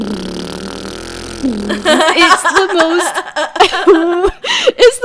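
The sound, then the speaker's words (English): A voice imitates an airplane, like the mouth-made sound effects in the film The Wind Rises, with a steady, buzzing drone for about two seconds, then breaks into voiced, chuckling laughter. “So a fucking, like, plane sounds like...”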